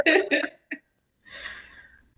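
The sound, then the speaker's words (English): Two quick, harsh coughs in succession, then a short catch, followed by a breathy rasping exhale. Fairly loud, with no talking. “I think we know what it is. Cough.”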